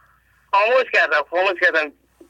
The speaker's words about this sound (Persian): لطفاً تلویزیونتون رو خاموش کنید. تلویزیونتون رو خاموش کنید، با تلفن صحبت کنید.